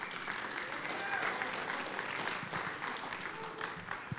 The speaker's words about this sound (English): So if we all just want to give him a big round of applause as he comes up this morning.